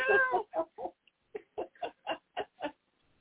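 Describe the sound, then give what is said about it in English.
A cat meows from a haunted house screensaver on a computer, one drawn-out, wavering cry followed by a quick run of about eight short, clipped calls in a steady rhythm, clear with no talking. “Because you hear the door of the haunted mansion opening and shutting, and you hear the cat.”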